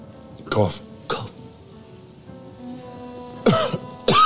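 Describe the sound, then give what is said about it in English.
Several short, forced coughs in bursts: two quick ones early, a pause, then two more near the end, fairly loud with a faint background hum between them; the first cough is forced and the rest follow. “So you make yourself cough.”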